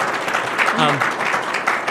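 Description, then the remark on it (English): An audience gives a panel a round of applause at the end of a show. Many hands make a dense, steady crackle of clapping for the full two seconds, and a short voice rises briefly over it partway through. “Can we give them a round of applause for this?”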